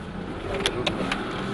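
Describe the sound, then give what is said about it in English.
A rally car drives to the start of a race on a cold morning, with a steady engine and road rumble filling the cabin, broken by three brief knocks or clicks. Nobody speaks. “There's a sense of nervous anticipation in the car as they make their way to the start.”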